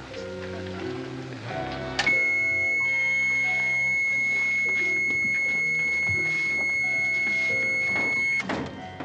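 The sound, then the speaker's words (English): A piercing, high-pitched electronic whine from a supersonic sound weapon cuts in abruptly and holds steady for about six seconds over busy orchestral music, then stops suddenly. “Few people can stand the vibrations of supersonic sound.”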